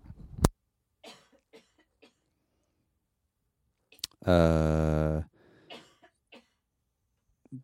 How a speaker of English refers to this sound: Sorry. Sorry. I had to cough.